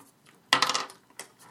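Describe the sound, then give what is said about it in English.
Dice for a damage roll (1d8 plus 4) clatter onto a hard table in a burst of sharp, bright rattling clicks that tumble and settle over about half a second, followed by a faint final click, with no voices. “All right, roll, all right, your, roll your damage. 1d8 plus 4.”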